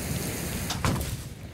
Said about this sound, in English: can you believe that rain? Unreal.